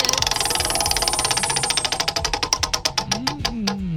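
A prize wheel, spun on a radio show to choose which game to play, turns with rapid ratcheting clicks that gradually slow and spread apart as it winds down, loud, with no talking over it.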